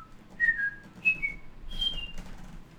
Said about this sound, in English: Are you just going to get louder every single time you whistle? Yes.